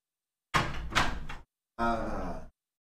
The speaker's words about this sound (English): Monica didn't close the door all the way, so let me do that.